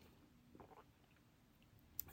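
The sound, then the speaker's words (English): A brief, quiet sip of iced coffee, a soft slurping burst followed moments later by a faint sharp click, with no talking. “So let me take a sip of my delicious iced coffee.”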